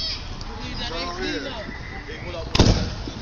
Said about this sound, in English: They're getting ready to light off some homemade fireworks, and they tip over, and they go everywhere. Listen to this. It's crazy.